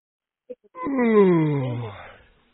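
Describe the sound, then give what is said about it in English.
A loud, drawn-out yawn with a voiced groan that starts high and slides steadily lower for over a second, then fades out. A couple of soft clicks come just before it. “calm down with the yawning.”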